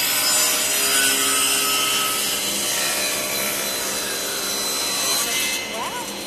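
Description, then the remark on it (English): A steady, loud whirring buzz of a table saw cutting through wood as a piece is fed right through, a dense continuous rasp that holds for several seconds before easing slightly at the end. “Now you turn off the saw.”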